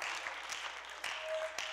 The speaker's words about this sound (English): Thank God for salvation. Oh, clap your hands unto the Lord this morning. Hallelujah.